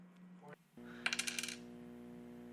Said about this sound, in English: So go ahead and roll 4d4 for me.